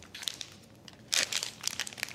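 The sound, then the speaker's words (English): A plastic marinade bag crinkling as marinade is poured into it, in irregular, crackly bursts, quiet at first, then a louder rustling flurry that trails into scattered softer crinkles. No one speaks. “Now I'll just pour 1/2 the marinade into each bag.”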